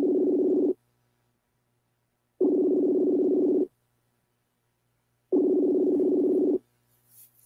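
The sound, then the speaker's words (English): Three ringback tones on an outgoing phone call to a woman, each a steady buzzy burst of about a second separated by longer silent gaps, heard clearly with no one talking. “And I'm just going to call her. Fuck it. We're calling her right now.”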